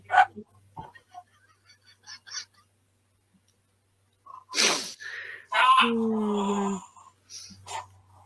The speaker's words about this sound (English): Oh, man. Was that the dog? Boy.